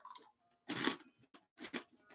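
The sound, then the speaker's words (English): Crunching of a fortune cookie being bitten and chewed, with one loud crackly bite followed by a couple of shorter crunches, and quiet pauses between. “Crunch, crunch, crunch.”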